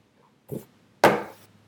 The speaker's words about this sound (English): What? Why do you keep slamming that door?